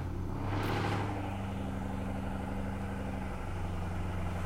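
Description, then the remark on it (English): A loud car roars past, its engine surging to a peak in the first second, then a low, steady engine rumble lingers and shifts pitch briefly. No one speaks. “Wow, that was pretty obnoxious of that car to do.”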